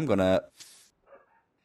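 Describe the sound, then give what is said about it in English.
A dog gives one loud bark, then a brief breathy huff and a faint, softer yip trail off in the quiet afterward. “All right, we had to pause there real quick because this is going to be a Halloween theme episode slightly, but I had to kill my dog.”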